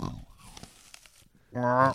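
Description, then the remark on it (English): Wet, smacking open-mouth chewing of a big bite of juicy food, a few irregular crackly squelches, followed by a sustained voiced hum or murmur toward the end. “So take a bite with your mouth open.”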